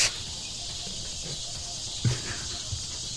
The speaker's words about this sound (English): Those cicadas. Yeah. It just... That is something that typifies anime to me.